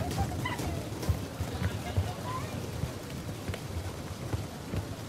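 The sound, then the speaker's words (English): A group drums and bangs on tables in a steady, rumbling clatter of irregular thumps, imitating thunder, with faint voices mixed into the noise. “Okay, now, if there was going to be thunder, okay, thunder, what would thunder sound like? Everybody on the floor, and you can bang the tables a little bit if you want as well.”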